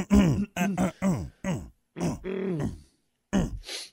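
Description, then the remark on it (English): A man's voice lets out a quick series of short, guttural grunts, about eight in uneven bursts with brief pauses between, fairly loud, ending in a breathy exhale. “Bunch of cavemen over there just grunting away.”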